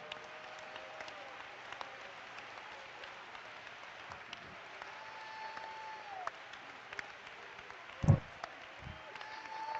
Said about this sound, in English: Clap your hands with me.